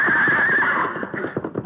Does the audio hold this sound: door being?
no